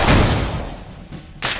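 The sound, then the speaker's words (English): A loud gunshot cracks out and rings off in a fading echo, followed a moment later by another sharp burst of noise. “And sure enough, a troop of robots comes around the bend, summoned by the gunshot.”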